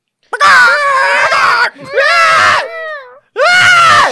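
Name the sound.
people imitating seagull calls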